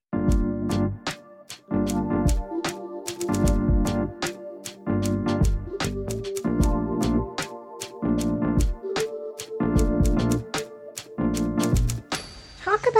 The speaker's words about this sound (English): While she clicked away at the noisy keyboard, he leaned slightly on the handle of his fancy, hard-shelled rollerboard suitcase.